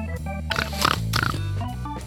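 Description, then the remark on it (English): Someone snorts like a pig, a few close, rough nasal grunts bunched together, with a steady low humming bed running underneath throughout. “Did you just snort like a pig?”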